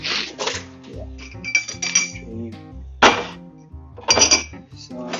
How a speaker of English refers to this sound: I'm here trying to get dinner done as I am making a podcast, as I am putting dinner, putting my dishes away after the evening.